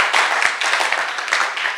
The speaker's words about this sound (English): Oh, it's a good place to clap for Jesus.